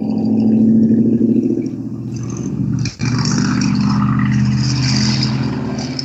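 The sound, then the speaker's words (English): A big jacked-up mud truck roars past outside in Florida, heard through open windows on a gorgeous day, its deep engine rumble loud and steady for several seconds, with a brief drop in the noise partway through. No one speaks. “the big jacked up mud trucks drive by and you can hear them as they go roaring by”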